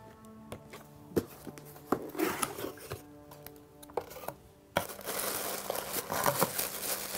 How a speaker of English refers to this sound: Some people like to save this tissue paper and keep this little sticker intact. If you want to, you can actually slide the contents out of the side of the tissue. Very crinkly.